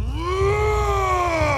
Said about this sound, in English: He stood three times as tall as any of Odysseus's men, with feet like tree trunks that would crush any of them beneath his weight. He let out a mighty, terrifying roar as he lumbered toward the Ithacans.